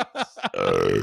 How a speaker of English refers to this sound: Why did you go away like you're gonna burp? Turn back to the mic and then burp. Well, because I want all my flatulence on the mic, actually. And mid burp, I thought I was gonna burp away, but I want it to be on the mic.